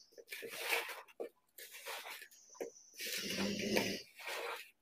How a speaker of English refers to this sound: hear my dog is mad that I have not given her some pumpkin and brown sugar. She's like sniffing loudly at me.